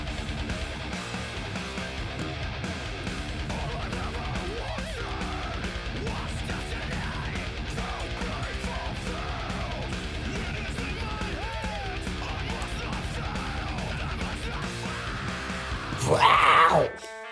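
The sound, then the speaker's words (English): A dense, loud metal track with harsh screamed vocals over distorted guitars and pounding drums, steady throughout before a brief, louder burst near the end. “Can you scream like this, Michael?”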